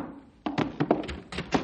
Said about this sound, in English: Hey, the door's opening by itself. Pretty fancy. Rangers have automatic doors. Hey, Stumpy, why'd you open the door for me?